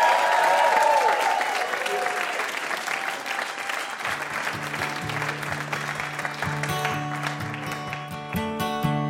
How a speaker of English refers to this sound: And having a huge round of applause for our VIP, Adam Rapoport.